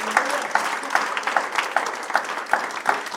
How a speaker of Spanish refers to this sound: La vida del Señor, hay deleite. Un aplauso fuerte al Señor.